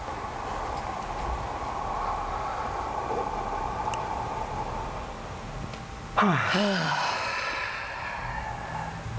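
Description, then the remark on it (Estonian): A long, slow, airy inhale through the mouth drawn in steadily for several seconds, then released in an audible voiced sigh. Soft, with no talking. “Hästi pikalt aega mööda naudi seda sisse hingamist.”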